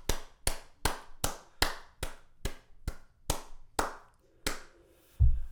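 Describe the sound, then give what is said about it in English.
A short burst of applause for a former athlete: about a dozen sharp, evenly spaced hand claps at a steady rhythm, clear, ending with a low thump. “Let's have a round of applause for Dino Ciccarelli.”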